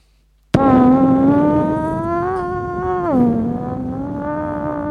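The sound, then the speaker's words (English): A sudden loud, buzzy fart sound that stretches into a droning car-engine whine, its pitch rising slightly and then dropping before it holds steady. No one speaks over it. “A fart that turned into a car sound.”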